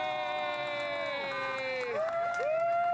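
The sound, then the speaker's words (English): About twenty people outside a restaurant booing loudly at a woman sitting in a parking space someone is trying to turn into, many voices holding long, wavering tones that slide downward in pitch and then swell again, continuous throughout with no clear speech. “And there's about 20 people outside of a restaurant that are booing her.”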